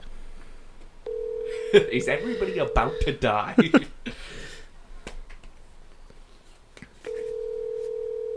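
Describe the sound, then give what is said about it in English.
A telephone call is placed. Its ringing tone sounds as a steady, mid-pitched electronic hum in two long bursts, with a person talking and some clattering in the gap between them. “If he doesn't answer, I'm not calling anyone else.”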